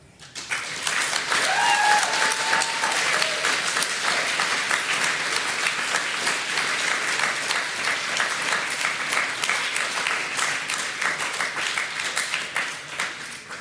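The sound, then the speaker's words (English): An audience bursts into sustained, loud applause, a dense wash of many hands clapping that holds steady for over ten seconds, with a few faint cheers or whoops rising briefly near the start. “Can we just have another like round of applause for Morgo, please?”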